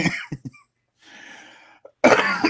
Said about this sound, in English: Sorry, still getting over a cold. So that's the first cough in quite a while. I feel good about that.